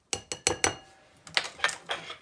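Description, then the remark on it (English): A 1-teaspoon measuring spoon taps sharply against a bowl four times in quick succession, followed by several softer, hissing rattles as a scooped, levelled teaspoon of celery seed is poured in. No one speaks. “I scoop. I level. I pour into the bowl.”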